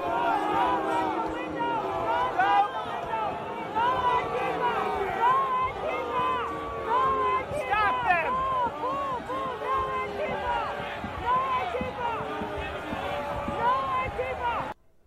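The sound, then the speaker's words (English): A large crowd of Trump supporters boos and yells at a man breaking out of a window, dozens of overlapping voices shouting at once in a loud, continuous uproar that holds steady before cutting off abruptly at the end. “And you can hear Trump supporters booing and yelling at a man who was breaking out of a window.”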